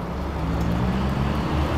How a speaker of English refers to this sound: I'm being followed by a fire engine.